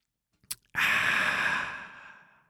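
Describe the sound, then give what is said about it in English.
A drink can cracks open with a small sharp click, followed by a loud, bright fizzing hiss that slowly fades over about two seconds. No one speaks. “All right, I'm going to break a rule, and I'm going to open a can of something.”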